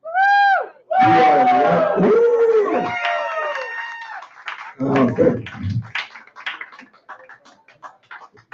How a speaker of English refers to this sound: That is three people. That's three people I've hired to yell.